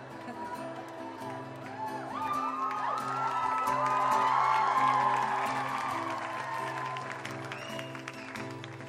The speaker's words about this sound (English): It's so hard to start a song. It's so hard to start a song when everyone just keeps yelling that they love you.